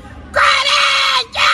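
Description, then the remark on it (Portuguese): A woman, a symbolic fan of the Corinthians football club, screams loudly in one long, shrill, sustained cry of almost a second, breaks off briefly, then launches straight into another piercing scream, shouting for Corinthians. “Ela tem potência de voz, Fausto Fafara.”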